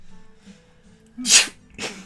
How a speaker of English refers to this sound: So she starts sneezing.